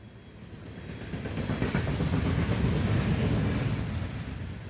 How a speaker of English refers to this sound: Locomotive 5017 left the Bakken oil fields of North Dakota on June 30th, 2013, pulling a long line of tanker cars behind it. Its destination was the Irving Refinery in St. John, New Brunswick, more than 3,000 miles away.